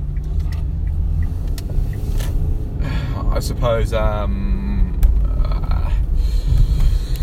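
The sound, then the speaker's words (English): Steady low rumbling hum from inside a moving car, continuous and fairly loud throughout, with brief muffled voice-like sounds partway through. “Again, in the car, another one of these,”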